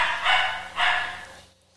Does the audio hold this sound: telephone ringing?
no